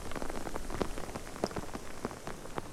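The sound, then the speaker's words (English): Steady rain patters, with sharp individual drops tapping loudly right on the microphone and a rock, over a continuous wet hiss. No voices. “I'm sure this rain's going to pass over just as quickly as it started.”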